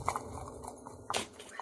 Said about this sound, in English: He just gallops away.